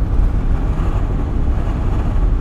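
A truck rolls by on a windy day with a steady, heavy low-pitched rumble and road roar, holding an even loudness throughout, with no voices.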